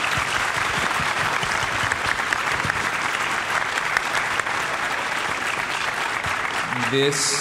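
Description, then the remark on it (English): An audience at the Energy Storage Building Efficiency Conference in Packard Music Hall, Warren, Ohio, applauds the panelists steadily, a dense wash of many hands clapping at even loudness for several seconds, with a voice starting to speak just as the clapping continues at the very end. “Let's give our panelists a round of applause, please.”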